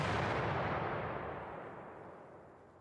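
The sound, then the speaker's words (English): A single loud cannon blast, like a gunpowder explosion, as rebels fire cannons, booms out and rolls away in a long, rumbling decay that fades over a few seconds, with no voices. “had been holding a bag of gunpowder when, in an ironic twist of fate, it was accidentally lit when the rebels started firing the cannons.”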